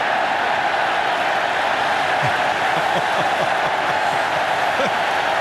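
A stadium crowd at a Nebraska football game against Michigan State roars during an 84-yard punt in a steady, loud, unbroken wash of noise, with a few individual shouts and yells briefly rising above it.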